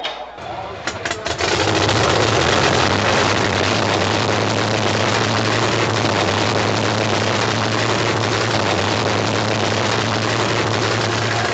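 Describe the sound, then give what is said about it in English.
A drag racing engine at night racing at the Fenway Drag Strip cranks with a few quick bursts, then roars to life and settles into a loud, steady, rumbling idle with a deep low hum underneath. “Okay, fire it up.”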